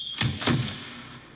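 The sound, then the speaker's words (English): The heavy door of a labyrinth swings shut with two deep thuds in quick succession, a low boom followed by a latching clunk, then a faint fading resonance. “When the door closed behind him, he was plunged into darkness.”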